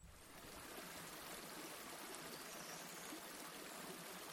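A steady rush of a river flowing on a sunny afternoon, running continuously at an even, moderate level with a dense, hissing texture and no voices.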